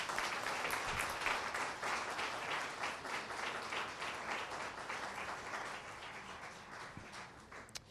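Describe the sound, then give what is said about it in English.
An audience in a church breaks into steady applause, many hands clapping in a dense, crackling wash that holds at an even level for several seconds before easing slightly toward the end. “Come on, church. Let's give those guys a big hand clap.”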